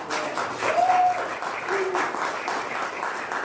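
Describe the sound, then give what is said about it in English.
A large church crowd claps steadily as a couple is invited up to share their story, a dense wash of applause that stays fairly loud throughout, with a brief whistle or cheer near the start. “Should we give a round of applause?”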